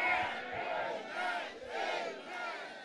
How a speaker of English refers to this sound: If you believe you are the one, shout three powerful, amen.